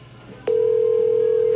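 A steady electronic phone ringback tone cuts in abruptly after a brief quiet moment and holds at an even pitch, ringing three times on an outgoing call.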